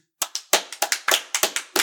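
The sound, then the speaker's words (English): A brief round of hand clapping: about a dozen sharp, crisp claps in a slightly uneven rhythm, moderately loud, with no voices. “I feel like there should be a studio audience applauding me.”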